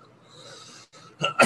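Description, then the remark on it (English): Two sharp, loud coughs burst out right up close to the microphone, following a stretch of soft breathy noise and a brief pause. “Cough right into that mic.”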